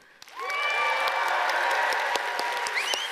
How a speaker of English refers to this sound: And so I want to just cheer for our other campuses, all right? They're going to be viewing here, so tuning in. So let's cheer them on. So let's cheer for our church family in Airdrie.